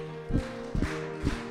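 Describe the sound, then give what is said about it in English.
Three evenly spaced claps land about half a second apart over a sustained musical tone, a steady group clap as everyone claps along to a clapping song. “But this is a clapping song, so everyone start clapping.”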